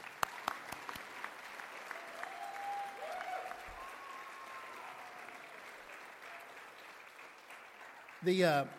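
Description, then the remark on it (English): An audience claps steadily as a senior is introduced and the family stands, a dense and continuous patter of many hands that holds at an even, moderate level for several seconds before a brief, louder voice breaks in at the end. “You can clap. It's okay.”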